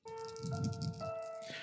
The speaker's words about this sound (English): Come on, dice, do better.